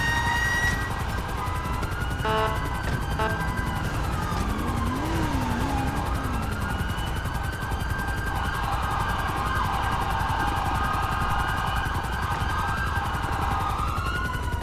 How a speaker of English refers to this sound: That helicopter's getting hella low. Yeah, 5-1 to that helicopter, yeah. Can you gain some altitude?